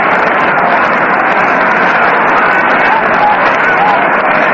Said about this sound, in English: Crowd is still murmuring over that play of shortstop Dick Bartell. It was what goes down in my little black book as a dilly.